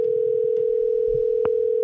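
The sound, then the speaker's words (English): A steady, unbroken telephone ringing tone from a call being placed to a friend on a phone hums at a constant pitch for nearly two seconds with a couple of faint clicks underneath, then cuts off abruptly. No one speaks. “Yeah, I'll use my phone, and you're not telling me, even though I'm the one who's going to type it in.”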